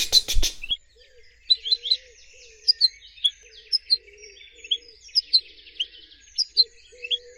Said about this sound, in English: Quite different to the harsher notes of a greenfinch going chit, chit.